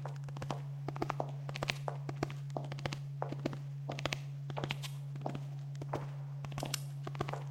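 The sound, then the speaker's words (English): Steady footsteps thud along upstairs at a walking pace, a series of soft impacts repeating for several seconds, with a constant low hum running underneath and no voices. “But we definitely heard footsteps upstairs.”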